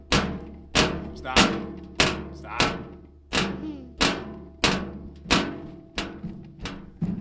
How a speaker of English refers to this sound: Hey, remember, we don't kick, guys. We don't kick. It disturbs the podcast.